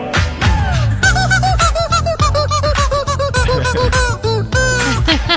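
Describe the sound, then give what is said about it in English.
A rubber chicken played by a man to a popular song squeaks out a rapid, pitched melody over a loud backing track, its honking squawks bending up and down in rhythm with the song. “So if you've listened to the show before, we've played clips where a guy can play a rubber chicken to some of today's popular songs.”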